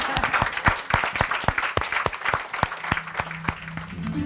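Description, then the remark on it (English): An audience applauds steadily for several seconds, the claps crisp, with a few sharper individual claps standing out above the general patter and a low hum creeping in near the end. “And at this point, yes, it's time to applaud.”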